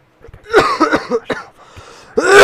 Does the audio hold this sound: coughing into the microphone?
yes